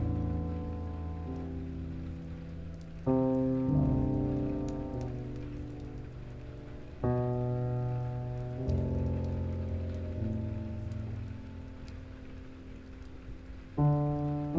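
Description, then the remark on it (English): Steady rain patters softly and continuously beneath slow, sustained ambient synth chords that shift every few seconds, with no voices present. “Be one with the rain. The comforting, rhythmic healer all around you.”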